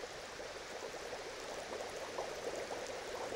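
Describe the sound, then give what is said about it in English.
In a buoyancy demonstration, a steady, dense stream of gas bubbles churns up through water around a floating ball, a continuous fizzing, gurgling rush at moderate volume with no pauses and no voices. “As I increase the amount of bubbles, the ball will sit deeper in the fluid.”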